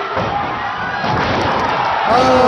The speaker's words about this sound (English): Yeah, so I want to play this video, but there's no real, it just sounds like a guy getting choke slammed. I mean, we can play it. Let's see what it sounds like. Oh, so he slaps him, and then the big guy grabs him by the neck.